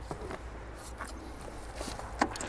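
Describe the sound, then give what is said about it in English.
An EV charge handle with a device fitted on it is pushed into the car's charge port against spring resistance and clicks as it locks, one sharp latch near the end, preceded by a few soft handling taps and scuffs against quiet background hum. “Push it until the charge handle locks to the car and let go.”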